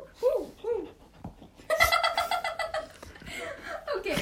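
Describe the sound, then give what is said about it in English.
A dog whimpers with a couple of high, bending whines, then breaks into a rapid, excited run of yips and yelps, fairly loud. “Tom, no! Stop, no! Stop! I'm not a dog! No unnecessary, stop, just sit patiently.”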